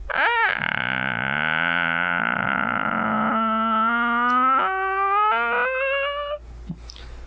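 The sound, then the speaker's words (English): A voice imitates a slowly opening creaky door: one long, strained, croaking groan of about six seconds that starts low and rough, then climbs in pitch in small stuttering steps before cutting off. “Oh, I can do a spot on slowly opening creaky door impression.”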